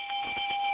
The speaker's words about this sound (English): Well, you get the first-time bell.